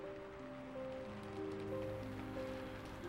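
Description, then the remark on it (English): Steady, soft rain pattering on a surface, a constant hiss of drops with no pauses, while faint sustained musical tones hum quietly underneath. “I don't remember much of those early years, but I do remember the rain.”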